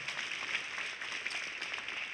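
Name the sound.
audience clapping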